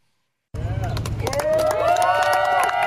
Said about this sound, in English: And they're cheering him as he takes his sip of water right there.